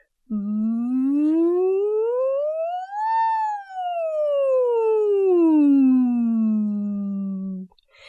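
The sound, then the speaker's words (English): A single sustained hum-like voice, as if through a straw, slides smoothly from a low pitch up to a high peak and then glides back down in a singing warm-up straw exercise, steady and fairly loud with no words, lasting about seven seconds. “So you might start on a lower note and glide up to a higher pitch and back down like this.”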